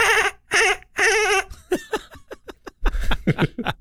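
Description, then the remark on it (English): A person imitates a dolphin with high, wavering squeals followed by rapid, choppy clicks and chirps, fairly loud, with no talking. “Well, it's a dolphin, but it's sick. It's a sad dolphin.”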